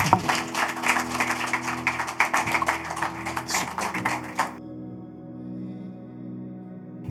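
A crowd claps together for about four and a half seconds, a dense, steady patter of many hands, then it stops abruptly and only a low hum remains.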